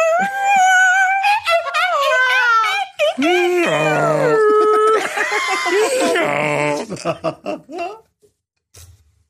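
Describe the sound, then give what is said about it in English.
A human voice imitates a donkey's bray: loud, wavering high-pitched cries, then a stretch of rough, alternating hee-haw tones that break into short gasping bursts before falling silent. “Was that a donkey in there at the end?”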